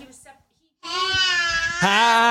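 A toddler, with a microphone held right over him, lets out a loud, sustained wailing yell after a brief babble and a short pause, the cry holding steady and then jumping higher and louder toward the end.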